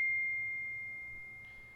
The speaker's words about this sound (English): Sorry, it's got a huge notification in my ears that you can hear.